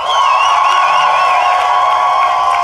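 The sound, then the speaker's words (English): An audience applauds steadily while cheering to vote for the side of Ben, Jade and Eve as having made the best case in a debate. High whoops and shouts rise above the dense clapping, and the noise stays loud and sustained throughout, with no one speaking. “But if you think Ben and Jade... and therefore Eve made the best case, applaud now.”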